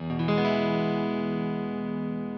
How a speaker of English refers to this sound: I've got it set reverb way up, and I've got it in the flange mode.